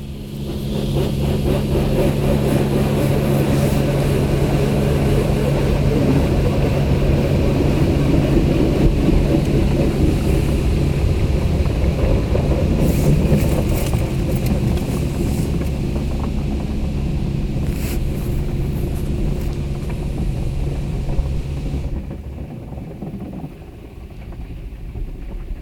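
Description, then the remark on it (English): A car drives along steadily on its way to a car wash, with a loud, continuous engine drone and road rumble, some wind buffeting mixed in, before the noise drops away near the end. No one speaks. “But now, we're off to the car wash.”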